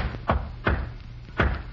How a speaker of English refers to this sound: When you bring my meals, knock three times, then once. What is that, sir? Knock three times, then once, like this.